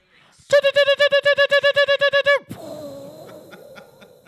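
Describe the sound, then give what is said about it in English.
A loud bird-chirp sound effect: a rapid run of about a dozen bright, even chirps lasting two seconds, then it cuts off into faint background talk. “Chirp!”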